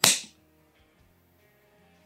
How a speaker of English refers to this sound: Oh, his girlfriend knows. Oh, what a slap to the face.